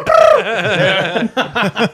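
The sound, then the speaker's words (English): A person's voice mimics a pigeon, opening with a loud, warbling coo that wavers in pitch, then three short throaty bursts in quick succession, alone. “The pigeons go.”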